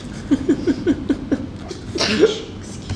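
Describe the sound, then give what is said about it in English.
A single sharp sneeze bursts out near the end, preceded by a string of short, rhythmic laughing breaths. It sounds moderately loud, with no talking. “Bless you.”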